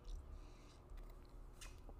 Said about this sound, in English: I'm taking a sip of water.